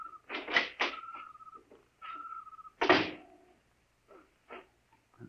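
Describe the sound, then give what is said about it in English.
A small side door creaks open, its hinge letting out drawn-out squealing tones between sharp wooden knocks and clunks, then a few softer thumps as it settles. Fairly loud, no voices. “Here's the door.”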